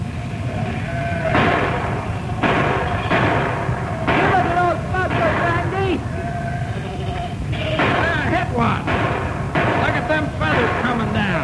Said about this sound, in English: Right now, Biff and Andy Bruce are using their rifles like anti-aircraft guns as they pour out a barrage of hot lead into the sky.